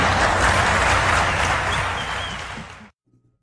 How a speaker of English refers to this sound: So the Muslim part of the audience claps